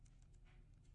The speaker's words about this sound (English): You might be able to hear me typing right now. I'm typing to Randy R. Quaid at Randy R.